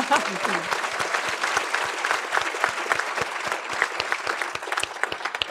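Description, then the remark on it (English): An audience claps steadily for several seconds, a dense, even patter of many hands with sharper individual claps standing out, and a brief voice at the very start. “In the middle, let's clap him.”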